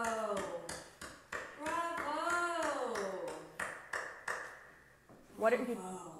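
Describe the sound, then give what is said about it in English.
A single person claps slowly and steadily, about two claps per second, the sharp hand strikes standing out over a murmuring voice in the background. “I'm applauding you.”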